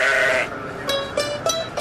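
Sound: sheep bleating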